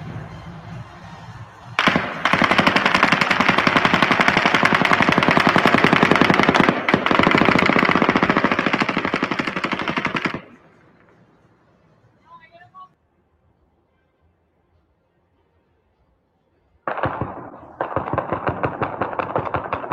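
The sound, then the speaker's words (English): Loud, sustained bursts of rapid automatic gunfire ring out for several seconds, fall away into a near-silent gap, then another rapid volley starts up and continues. “So, and by the way, there's no gunfire coming from 32-135 because we don't see the window broken.”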